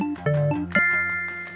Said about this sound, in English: That chime is your indicator that 10 seconds is up and it's time to lock in your answer.